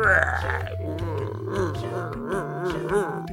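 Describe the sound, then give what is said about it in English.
A voice imitates the hungry, growling stomach of the story character Story Man with a continuous low, gurgling groan that wavers and rumbles for a few seconds, fairly loud, with no actual words. “But suddenly, he heard his stomach growling.”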